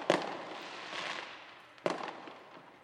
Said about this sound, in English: The fireworks! But how?